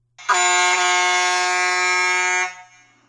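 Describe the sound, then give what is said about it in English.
A novelty truck air horn, the Mother Trucker horn with a tugboat-horn sound, lets out one loud, sustained blast lasting a little over two seconds, a bright, brassy tone holding a steady pitch before cutting off abruptly. No one speaks. “Kind of like that one, the tugboat horn. That's nice. The Mother Trucker horn.”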